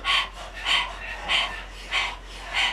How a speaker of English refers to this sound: Those of you who know Breath of Fire can jump into it. If you've never done it, stick your tongue out of your mouth. Begin to pant like a dog, focusing on the exhale.